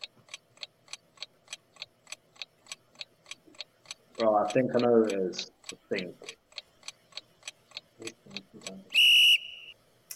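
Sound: quiz countdown timer ticking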